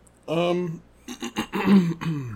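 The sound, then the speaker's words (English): A person hums or groans briefly, then clears their throat in a few quick, rough bursts followed by a short rasping effort, fairly loud. “Other than having to clear your throat twice already.”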